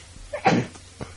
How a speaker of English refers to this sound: That was me holding back. Sorry, guys, I sneeze a lot.